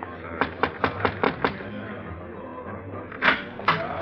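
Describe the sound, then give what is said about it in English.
A quick run of six sharp knocks on a door in a steady rhythm, then a pause and two more separate raps, distinct. “Just knock on the door, monsieur.”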